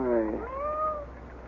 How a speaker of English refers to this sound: All right, now. Stop your crying, kittens. I'm coming. Just wait.